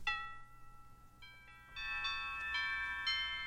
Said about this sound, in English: Doorbell.